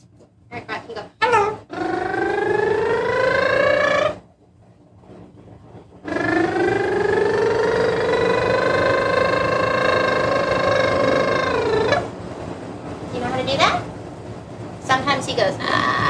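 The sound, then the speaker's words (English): A bird gives two long, sustained whistles, the first about two seconds and the second much longer, each steady and fairly loud, with brief chirpy bursts before and after. “and it's very funny because you'll watch him flex a lot of his muscles thinking about how to make it, and then he sometimes just quits and does a whistle, and so that's always really funny.”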